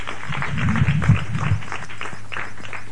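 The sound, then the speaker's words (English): An audience in South Africa claps for the Lord together in a steady, dense burst of applause that fills the whole moment, with a few voices briefly calling out beneath it near the start. “So give the Lord a clap of him for that.”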